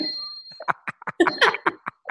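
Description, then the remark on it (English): A clock chime gives a short, bright ringing tone that lingers and fades at the start, then gives way to a quick series of choppy, voice-like bursts. “Oh, my clock is dinging.”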